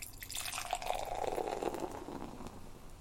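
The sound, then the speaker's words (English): A citrus, unfiltered California-style beer (5.4%) pours steadily into a glass, a continuous gurgling splash of liquid with a rising, fizzy texture, lasting about three seconds with no one speaking. “And now, for the pour.”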